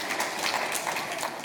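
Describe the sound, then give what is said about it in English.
On Christmas Day, a crowd applauds for the speaker's wife who wrapped all of the family's Christmas presents, with dense, steady clapping that holds at an even level for the whole moment, many hands blending into a continuous patter with no voices. “While we're clapping, we should put our hands together for my wife who wrapped all of the Christmas presents for my family.”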